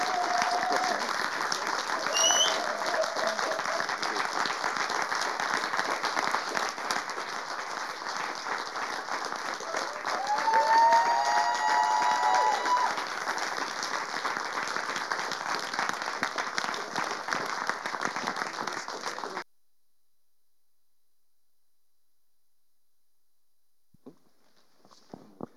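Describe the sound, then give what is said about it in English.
A large church audience stands and claps in loud, steady applause for about twenty seconds, honouring people as they return to their seats, with a brief cheer or whistle rising midway, then it stops abruptly into near silence with a few faint knocks. “So as they go back to their seats, can we just stand to our feet for a second, please, as a church, and give them a wonderful round of applause for all they've done.”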